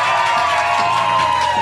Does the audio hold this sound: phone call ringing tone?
no